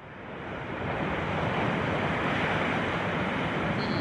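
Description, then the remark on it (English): Steady rushing ocean surf fills the whole clip, a broad, continuous wash of breaking waves that swells slightly louder after the first second and stays constant, with no voices. “Nice calming sound. Waves.”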